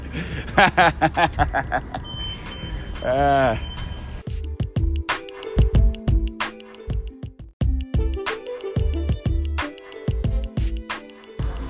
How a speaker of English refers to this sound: We're listening back to this, laughing at the fucking bus noises.